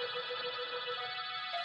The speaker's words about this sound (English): I must have been close to dozing off when I heard the doorbell faintly, as if in a dream.